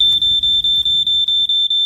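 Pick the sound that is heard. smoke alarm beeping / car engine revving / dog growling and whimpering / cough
smoke alarm beeping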